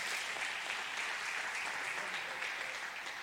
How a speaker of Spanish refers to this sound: Dale un aplauso a Jesús.